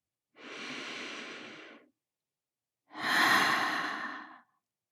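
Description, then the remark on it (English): A slow, deep inhale through the nose lasting over a second, a brief pause, then a longer, louder breathy exhale sighed out through the mouth, both clear with no talking. “And you can imagine breathing in joy and breathing out any difficult things from this week.”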